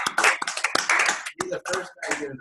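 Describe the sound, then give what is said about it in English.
A brief burst of applause from a small group welcoming a young American speedway rider as a guest, dense clapping at first that breaks into scattered claps as voices and talking come in over it. “The first guy getting applause.”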